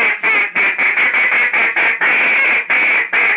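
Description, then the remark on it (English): A duck call blows a quick, loud series of about a dozen raspy quacks in a steady, driving rhythm, with no talking. “If the fourth set was a three, you would come out after you did your two, you would go, you would do it like this right here.”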